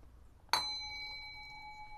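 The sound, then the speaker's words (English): A single bright meditation chime, signalling that it is time for meditation, strikes once and rings on with steady, pure high tones that sustain and slowly fade, heard alone with no talking. “That's the chime. That means it's time for meditation.”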